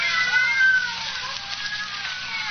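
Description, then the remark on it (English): Half a dozen cats locked in a room meow and yowl at once in a dense, continuous chorus, fairly loud, with overlapping cries rising and falling and no talking. “Yes, some fiend, knowing her deadly fear of cats, has locked her in here with half a dozen of them.”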